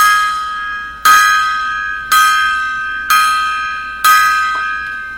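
A bright metal bell is struck five times as a memorial salute for a rock singer who had died, in slow, evenly spaced strokes about a second apart. Each ring is loud and fades before the next. No voices are heard.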